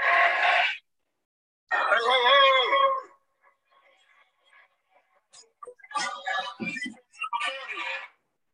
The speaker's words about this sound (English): And the umpire turns on his mic and just to make sure that everybody can hear him, he's like, hey, hey, hey. The entire crowd yells back, hey, hey, hey. In fact, I got that clip right here.